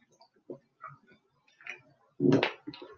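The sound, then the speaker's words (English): A plastic water bottle crackles during drinking: scattered small crinkles and clicks at an irregular pace, then a louder, sharper burst of crackling toward the end. “So if you hear the crackling of the bottle, forgive me.”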